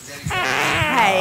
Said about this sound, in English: Was it me farting? No, but that was memorable.